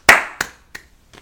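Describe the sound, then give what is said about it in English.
A short, polite golf clap: four crisp, evenly spaced hand claps that grow softer each time and trail off quickly, heard alone with no talking. “The golf clap, or the clap that doesn't go on for long enough.”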